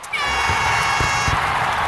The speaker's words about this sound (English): I've also made a really cool siren that's going off right now. Yeah. It has a lot of air horns, fireworks, and for some reason a zombie eating brains.